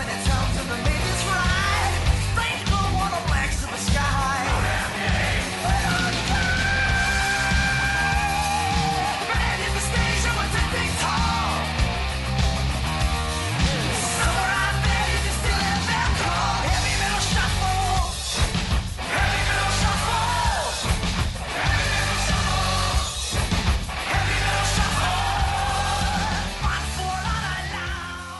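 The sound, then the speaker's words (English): A heavy metal song with a slight shuffle feel: dense, distorted guitars and steady pounding drums keep up a loud, unbroken wall of sound for the whole stretch, with a voice shouting over it. “You could argue to some extent that it does have a bit of a shuffle to it.”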